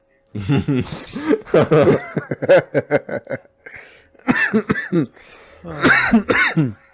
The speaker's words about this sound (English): Why are you coughing